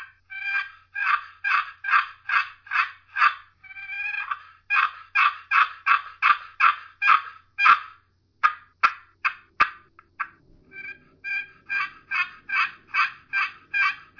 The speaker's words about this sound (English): But I'm going to move the call away from the mic, run this box call for a few seconds, and this is what the winner is going to get.